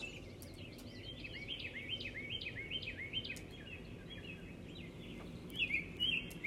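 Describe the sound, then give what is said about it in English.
Birds chirp in a steady outdoor chorus at sunrise, one bird repeating a quick rhythmic series of bright notes with sharper calls near the end, over a low rumbling background hum. “You hear those birds?”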